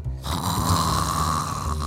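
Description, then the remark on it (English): Several voices fake snoring together on cue, pretending to be asleep, in a loud, sustained, rumbling burst, a low nasal drone with a rasping texture that continues steadily for a couple of seconds. “If you can hear me clap once, if you can hear me clap twice, if you can hear me play asleep.”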